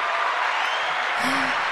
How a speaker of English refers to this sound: Oh my God. They're clapping for us. It's really for us. Oh my God. How exciting.